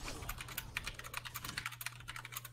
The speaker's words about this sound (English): I'm typing blue.